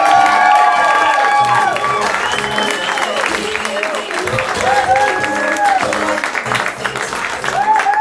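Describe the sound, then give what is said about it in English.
Steady, loud applause from an audience at a storytelling show as the first storyteller is introduced, with cheers and whoops rising over it, continuous for the full length with shouted voices mixed into the clapping. “And keep that applause going for our first storyteller,”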